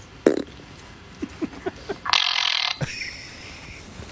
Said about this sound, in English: Yes, and this one's fantastic because she has a megaphone and she's in a library. Oh, good. Yes, this is going to be great. Let's check it out. Yes, my fart.